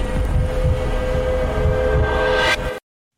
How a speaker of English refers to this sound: Oh, also really cool, mm-hmm. like that train sort of noise.